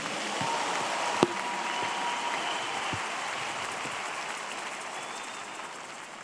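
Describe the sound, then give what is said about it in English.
An audience applauds steadily for about six seconds as a clap offering to God, many hands clapping in a dense, even wash of sound with one sharper clap standing out early on. No one speaks. “Give him another clap offering.”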